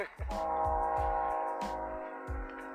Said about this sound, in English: I hear a train a coming. Hear that? Rolling around the bend.